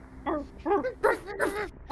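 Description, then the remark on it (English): A voice imitates dogs barking and baying, with four quick yelping calls in a row, fairly loud, and a little breathy noise between them. “And those dogs came bursting around the corner of the cabin.”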